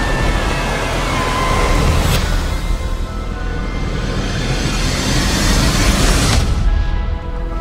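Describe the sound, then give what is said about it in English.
A Delta rocket engine roars at liftoff in trailer audio for the film Goodnight Oppie, a loud, steady wall of deep rumble and hiss that fills the whole clip, broken by two brief crackling surges. No one speaks. “Three. Two, one, engine start and lift off.”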